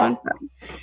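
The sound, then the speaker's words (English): A single quick sneeze, fairly loud, with a sharp voiced burst at the start that trails off into a softer breathy hiss. “That was a sneeze.”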